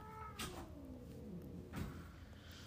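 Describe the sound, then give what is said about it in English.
A cat lets out a drawn-out, wavering meow that slides downward in pitch, fairly quiet, with a couple of soft knocks or thumps in the background and no one talking. “Now he wants to go mess with the cat.”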